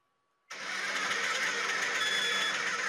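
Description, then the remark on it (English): A DAF truck engine suddenly roars to life after a brief near-silence with a faint tone, then runs at a steady, loud, rumbling idle with no voices over it. “It's name that truck. So I'm going to play you a sound, and you've got to tell me what truck it's what?”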